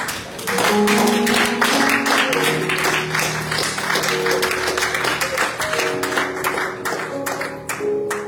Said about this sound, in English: Stand if you give God a hand clap of praise.